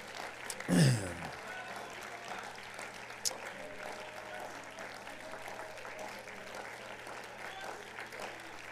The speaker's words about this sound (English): And if you believe the Lord's going to do it, one more time, would you clap your hands to the Lord and give the Lord a shout of praise?